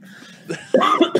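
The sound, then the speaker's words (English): A short fit of harsh, raspy coughing after smoking cannabis, three or four rough bursts in quick succession growing louder, with a faint strained exhale before them. “Cannabis cough.”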